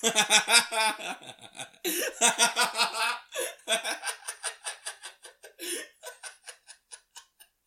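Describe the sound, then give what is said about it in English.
Loud laughter breaks into a rapid string of short, regular hiccup-like bursts that keep repeating and gradually soften, with no clear talking. “This is like the hiccup episode, dog.”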